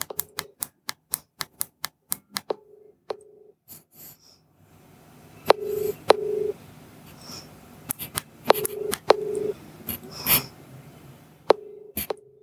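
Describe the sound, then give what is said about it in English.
Sharp popping clicks burst from the top earpiece speaker of a Pixel 6a phone during an outgoing call, first in a quick regular series, then irregularly, with short steady tones in between over faint background hiss. Nobody speaks. “So you can hear that popping sound that the speaker is making.”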